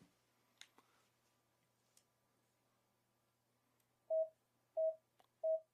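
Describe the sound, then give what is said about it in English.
Three evenly spaced electronic countdown beeps cueing a line reading, the line to be delivered on an imaginary fourth beep; each a steady mid-pitched tone lasting about half a second, sounding loudly after a few faint clicks and taps, with no voices present. “You'll hear three beeps on the imaginary fourth beep.”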